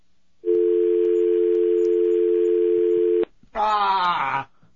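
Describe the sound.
A loud, steady telephone dial tone after a dropped call hums for about three seconds, unbroken, then cuts off abruptly and a brief voice follows.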